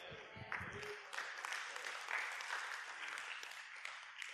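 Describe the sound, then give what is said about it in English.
An audience claps their hands in a steady, dense wash of applause that continues throughout, with a voice briefly audible at the very beginning. “What'd you just do? You just clap.”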